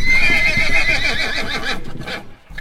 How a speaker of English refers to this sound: I kicked ruthlessly. My horse screamed.